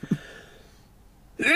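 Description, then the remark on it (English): A couple of short, soft breathy catches, then a quiet pause before a sudden loud, hissing sneeze bursts out at the very end. “Bless you.”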